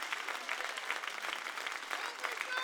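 An audience claps their hands in a dense, steady wash of applause, many overlapping claps blending into a continuous bright patter that holds at an even level throughout.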